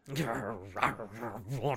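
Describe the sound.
Joe Rogan growls in a low, rumbling, voiced snarl for nearly two seconds, its pitch rising and falling in a few throaty surges, loosely imitating an animal.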